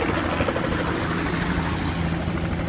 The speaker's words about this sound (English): And okay, here comes our helicopter. So there's a lot of dust coming up as it's landing by the we're actually by the car park at the moment.